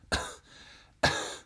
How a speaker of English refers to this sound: The coins within clinked together as she rose to her feet, coughing.